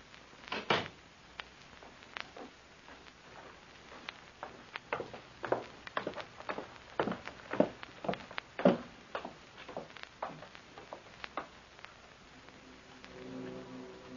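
A run of sharp, uneven footsteps thuds down a staircase as a man comes down the stairs and walks out through a door, ending with the door being opened; no one speaks.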